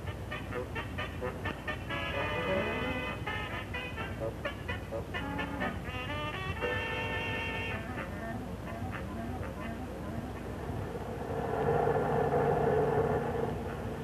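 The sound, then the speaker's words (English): A steady, low engine rumble from a bus that has been driving for more than an hour drones throughout, swelling slightly near the end, with people talking over it. “We've been on this bus more than an hour.”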